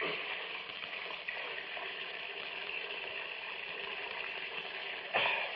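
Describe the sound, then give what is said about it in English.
Tap water runs steadily into a glass in a small kitchen for a drink, with a constant hissing splash, ending with a brief louder burst near the end. No one speaks. “Like cold water.”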